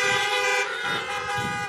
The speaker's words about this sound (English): Go ahead, honk to laugh. Give me a little song there.